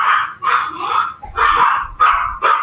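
A dog barks repeatedly in quick bursts, about five or six loud yaps with short gaps between them and no voices over them, during a Discord call.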